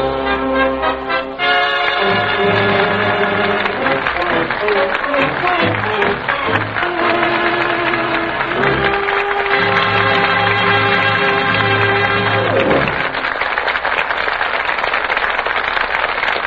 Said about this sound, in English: I know, ladies and gentlemen, that you want to add your applause to that of the studio audience.